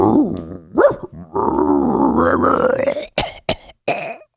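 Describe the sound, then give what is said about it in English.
A person imitates a raccoon dog with a rough, warbling growl lasting a couple of seconds, then breaks into several sharp, hacking coughs, fairly loud, with no words spoken. “Is that how raccoon dogs sound?”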